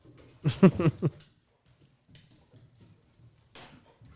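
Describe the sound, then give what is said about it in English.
A dog gives a short burst of whiny, yelping vocalizations, followed by quiet shuffling, faint movement sounds and a brief rustle. “Dog, settle down.”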